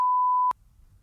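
A single loud censor bleep covering spoken words, a steady pure tone lasting about half a second that cuts off abruptly, followed by faint low background rumble.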